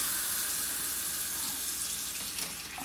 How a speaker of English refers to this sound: All right. Run a bit of water.